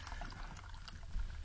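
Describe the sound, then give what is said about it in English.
A drink pours steadily into a glass, a continuous splashing liquid sound with bubbly gurgles, moderately loud, lasting the whole brief moment with no one talking. “So as we pour a drink, he's going to let us know who's in.”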